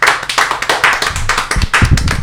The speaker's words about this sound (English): The punchline hits. Everyone applauds.